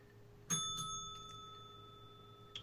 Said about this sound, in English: Ring the bell, DP.